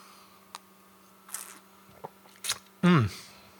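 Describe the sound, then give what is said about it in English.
Sipping from a glass of Guinness beer: soft clinks and a couple of brief slurps, followed by a loud, satisfied vocal exhale right at the end. “I'm going to have a sip”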